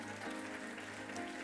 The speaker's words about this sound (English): Come on, if you're going to give him a clap, give him a clap.